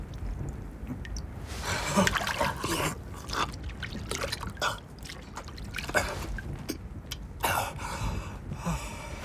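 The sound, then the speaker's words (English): Water trickles steadily, with irregular little splashes and drips breaking through the continuous gurgle. Nobody speaks. “Precious. Precious water.”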